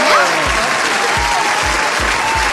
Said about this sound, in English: Round of applause for Keisha.